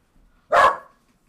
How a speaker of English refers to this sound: thank you, dogs.